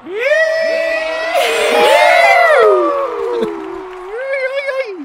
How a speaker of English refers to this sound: we hear a rebel yell of excitement reverberate through the stadium.